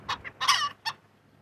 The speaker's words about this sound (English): This is your daily chicken barnyard noise ASMR.